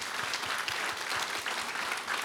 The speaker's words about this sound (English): I do have a few people, so we thank the Lord for his word. Give him a hand clap. Amen.